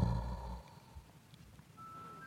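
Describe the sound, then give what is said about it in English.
A faint, steady mechanical whine from a drone flying around, opening with a low rumbling burst before a thin high-pitched hum settles in toward the end. No one speaks. “I hear the drone zipping around.”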